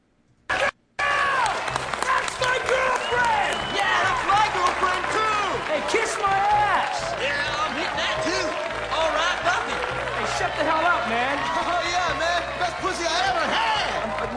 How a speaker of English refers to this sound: And let's play this little scene where all the guys are yelling right after … starts yelling.